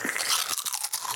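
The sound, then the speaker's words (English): Loud slurping sips of cocktails, a hissy, airy stream of noise broken into a few quick bursts over about a second, with no talking. “Yeah, let's make very loud and annoying sipping noises.”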